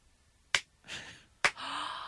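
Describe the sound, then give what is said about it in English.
A daughter's slow clap at a restaurant after everyone had left: two sharp, crisp claps almost a second apart, each followed by a soft, breathy hiss that lingers. No one speaks. “A slow clap.”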